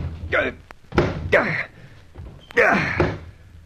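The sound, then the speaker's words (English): Several heavy, dull thuds of a shoulder ramming the solid wooden door of a watch house, locked and padlocked from the outside, spaced unevenly, with strained grunts of effort between the blows. “The dashed door's as solid as a rock. So, wasting your time shouldering it.”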